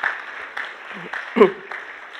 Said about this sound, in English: That's right, give them a clap.